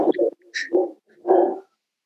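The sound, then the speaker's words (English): A dog barks in a quick burst of three or four sharp, loud barks, with a brief whimpering yip between them and no one talking, as someone delivers something to the house. “Delivering something to my house and my dog's going to eat him.”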